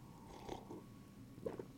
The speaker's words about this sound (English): I'm recording an episode of Reboot Higher Ed on today of all days, and sipping some black tea, excuse me.